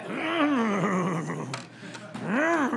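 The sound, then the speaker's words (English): A voice mimics an old car, likened to a 1958 Chevy, struggling to start: strained, groaning vocal sweeps rising and falling in pitch, broken by a brief pause and then another sputtering, wavering attempt. “It was like a 58 Chevy. She wouldn't start up.”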